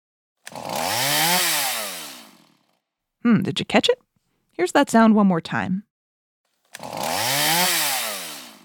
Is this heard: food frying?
no